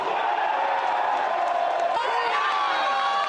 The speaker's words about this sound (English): As the crowds were cheering for a comeback, a big second-half press from Canada, nearly tying it when Brampton native Atiba Hutchinson's header hit the crossbar.